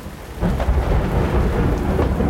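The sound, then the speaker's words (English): Thunder rumbles low and heavy through a steady downpour, the rolling boom swelling in after a quieter start and sustaining under the constant hiss of rain. “I remember hearing the thunder define the far reaches of the valley as the storm passed over me, drenching me.”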